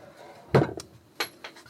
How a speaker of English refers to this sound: How will I show you that I'm in my kitchen? Well, this is my drawers. You can hear that. I've got lots of interesting kitcheny things in these drawers.